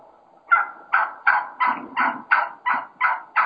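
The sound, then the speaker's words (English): A wild turkey hen, recorded on a Gould's turkey hunt in Arizona, yelps in an excited, aggressive run of about nine sharp, evenly spaced notes, loud, with no one talking over them. “But I think this is just classic, you know, kind of excited, kind of aggressive hen yelping at its best.”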